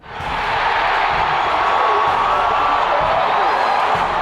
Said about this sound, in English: Purdue pulled its biggest upset of the decade the week Coletto announced his resignation, knocking off ninth-ranked Michigan 9-3 and setting off a delirious celebration at Ross-Ade Stadium.